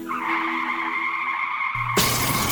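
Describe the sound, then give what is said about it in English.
A car's tires shriek in a long, loud skid for about two seconds, then a sudden crash hits, with bright shattering glass and a low thud as the impact breaks the squeal. “We hope this never happens to you. If it does, trust your car to the pros at Auto Techies”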